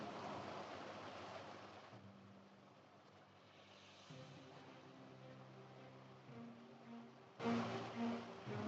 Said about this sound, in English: So you hear, like, just through the pounding of rain, the flapping of small leathery wings until...